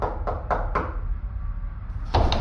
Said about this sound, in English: Okay, I'll just knock on this door and see what happens.